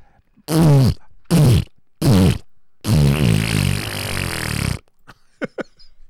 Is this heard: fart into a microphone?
yes